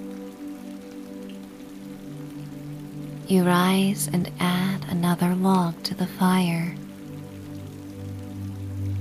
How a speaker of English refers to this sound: The rain falls steadily. A few pine branches brush against the cabin, caught up in the wind, lulling you into a state of deep peace and gratitude for this cozy home within the woods.